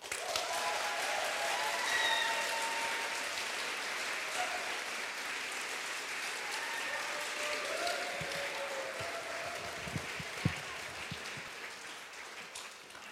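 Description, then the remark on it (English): An audience at the 2019 MSW Prize spoken word competition applauds the very first competitor steadily for about thirteen seconds, a dense wash of clapping that stays loud throughout, with a few scattered sharper claps near the end. “Please give her a huge round of applause.”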